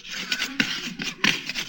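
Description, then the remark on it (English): A cricket chirps in a run of short, raspy, scraping bursts, about five of them in an uneven rhythm, fairly bright in tone and moderately loud, with no voices. “That's not me. That's a cricket.”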